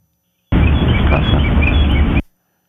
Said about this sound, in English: But there's a voice that speaks over the birds chirping. So let's try to hear that. That's a bird. Well, yeah, there is a bird.